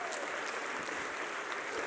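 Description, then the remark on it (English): A church audience at North Boulevard applauds a record attendance of 2,200 in person: a dense, even wash of many hands clapping at once that holds at a constant level throughout, with no individual claps standing out. “And you should applause or something, because God did something cool.”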